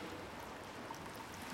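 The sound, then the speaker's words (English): A steady, hushed wash of water inside a sea cave, like a continuous low churn of surf, with faint droplet-like flickers on top and no voices. “I love this old sea cave, but it's hard to move around in here with this silk cane.”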